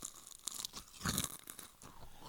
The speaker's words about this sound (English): Make sure you chew right into the mic. Make sure the ASMR people are jerking off now. Oh, he's chewing those Cheez-Its. Get in there.